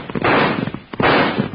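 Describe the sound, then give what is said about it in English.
Two loud, booming shots from a six-gun revolver fire about three-quarters of a second apart, each a sharp crack trailing off in a rumbling echo, with no voices; a man up on a hill shoots at people in the back of a buckboard, hitting a man. “That coyote shoots at them people in the back door. He hit the man.”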